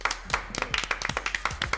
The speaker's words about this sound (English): Round of applause for Jilly. Round of applause.